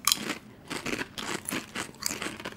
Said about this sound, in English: Yeah. Let's eat some expired chips. Here we go.